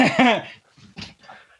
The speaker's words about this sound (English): can you hear the dog in the background? He's absolutely losing his mind.